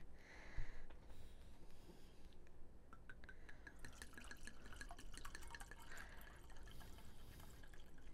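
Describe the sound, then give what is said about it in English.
Wine pours steadily into a real glass (not plastic) wine glass for several seconds, a continuous gurgling splash with a faint rising tone as the glass fills. No one speaks. “Oh, when you hear the pour. Let's hear the pour.”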